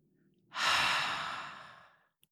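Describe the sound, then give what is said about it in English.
A single deep breath, mostly a long breathy exhale that swells quickly and fades out over about a second and a half, with no talking around it. “And let's take a deep breath in, holding that one thing at the top and breathing out.”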